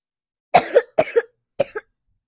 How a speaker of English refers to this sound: You're coughing too late in the story, silly.